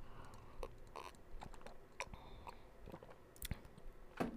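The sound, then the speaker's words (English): Quiet sipping from a drink, with soft wet mouth clicks and a few swallows spread over a few seconds, with no talking. “I'm about to take a sip of my drink.”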